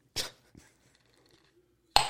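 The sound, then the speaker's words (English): The lid of a jar of mild pickled quail eggs pops open with a sharp, bright snap, followed by a faint click and a quiet lull, then another crisp metallic pop at the end. No one speaks. “Ooh, that's a nice pop right there.”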